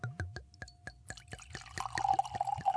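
Orvieto wine glugs from a bottle into a glass in Italy, starting as quick rhythmic splashes and building into a steady, rising pour with a bright ringing tone as the glass fills.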